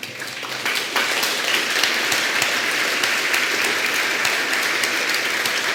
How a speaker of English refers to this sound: That really wasn't that impressive. I don't know why you all are clapping.